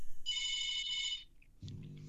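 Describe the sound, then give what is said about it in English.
A phone rings with a bright, shrill electronic trill lasting about a second, then stops, followed by a lower, muffled sound. “Who the hell's calling me?”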